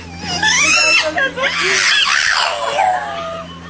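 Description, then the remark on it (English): A dog from an internet video makes loud, whiny, talk-like vocalizations, a few sliding yowls and groans that rise and fall in pitch as if mimicking speech, with no other voices. “You ever see that dog on the internet that actually was going, oh, roar, roar? Here it is.”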